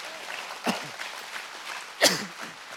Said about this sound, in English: Come on, let's clap our hands and say a good amen.